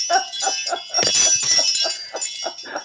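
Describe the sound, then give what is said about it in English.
Metallic tones of an expensive wind chime hanging from a curtain rod ring and jangle in quick repeated strikes, with a louder clattering crash partway through as it is pulled down, then the jingling continues and settles. “I don't have an expensive wind chime anymore.”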